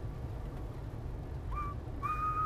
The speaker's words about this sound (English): Have we ever whistled on the pod? That might have just been the first whistle on the pod. That might have been the first whistle.